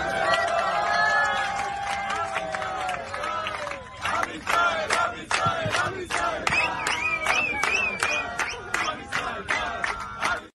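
A group of Israeli travelers from a trek in Peru sings loudly and excitedly together on an airplane flying from Peru to Israel to join the war, sustained chanting voices giving way to rhythmic clapping and shouts in the second half.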